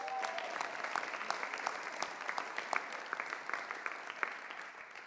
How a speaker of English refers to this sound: So as we begin to think about what God did for us, let's give God a great big round of applause.